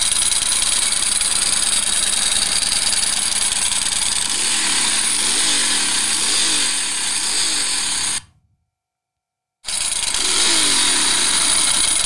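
A Ducati 916 motorcycle engine runs loud, its revs rising and falling with a rattly dry-clutch clatter, then cuts out abruptly for about a second before roaring back.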